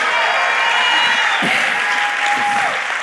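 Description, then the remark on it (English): A crowd applauds loudly and steadily for a few seconds for a group of people called up to the front, a dense wash of clapping with a faint whistle-like tone and some murmured voices mixed in. “Can we make some noise for these guys?”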